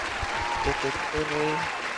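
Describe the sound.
A clapping sound effect: a steady wash of crowd applause runs for a couple of seconds, dense and fairly loud, with a few voices calling out or cheering on top of the clapping.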